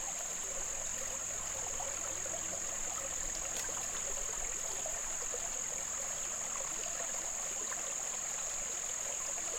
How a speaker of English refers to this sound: Just listen to the creek for a minute. It's lovely.